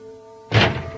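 An office door bursts open halfway through with a sudden heavy thud and a rushing, rattling clatter that trails off, following a quiet steady hum.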